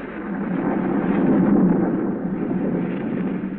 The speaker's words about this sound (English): A storm rages wildly over the countryside.